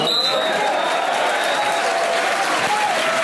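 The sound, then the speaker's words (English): A football stadium crowd at a non-league AFC Wimbledon match roars and applauds at half-time, with Wimbledon leading league leaders Burton Albion 2-0. It is a dense, sustained wash of noise, with a few high whistles cutting through steadily for the whole stretch. “Listen to the roar that's going to greet this.”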